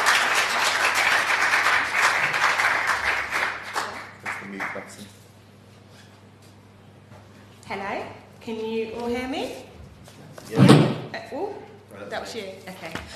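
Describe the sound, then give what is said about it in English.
An audience claps enthusiastically in welcome of a speaker at an evening gathering where the Word of God is shared, a dense, steady burst of applause for about five seconds that tapers off quickly, followed by a short pause and then a single person starting to speak. “one thing we can do is we can clap our hands and we can go like that. So let's welcome ….”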